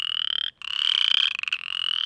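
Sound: chorus frog calling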